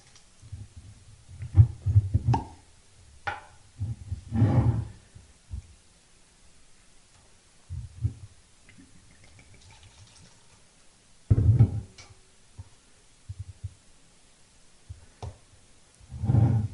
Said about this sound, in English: So I'm going to close this episode out with opening a bottle of Driftless Glen Mythical Pick. Excuse me.